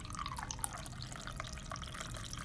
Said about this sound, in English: Did the microphone pick that up? Me pouring my coffee.